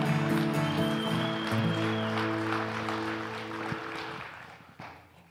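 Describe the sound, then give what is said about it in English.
A church audience claps steadily to welcome a pastor coming up, a dense, even patter over sustained music chords, with the applause thinning out and fading over the last second or so. “I love the forced applause because now I don't have to, you know, egg one on from you guys.”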